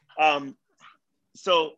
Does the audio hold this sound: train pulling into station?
no